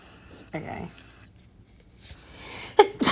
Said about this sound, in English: Ew, bless you.